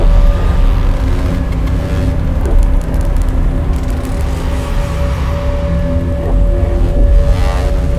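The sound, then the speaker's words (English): A sonified gravitational-wave signal from a black hole inspiral, a lighter black hole falling into a very heavy black hole and banging on space each time it gets close: a loud, continuous low rumble with steady humming tones and a faint crackly texture, heard alone without any voices. “The sound you're hearing is a light black hole banging on space each time it gets close.”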